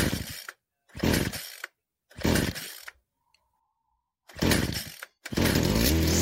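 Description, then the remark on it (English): Loud, harsh mechanical grinding like an oversized garbage disposal, coming from inside a bell as a whirlwind of blades clears out a nest, sticks and dirt: four short bursts with gaps of silence before a fifth, longer burst that churns with a low, rattling rumble. “The sound of a garbage disposal, but much bigger, are heard coming out from the inside of the bell as it just fucking cleans house on the inside of this bell.”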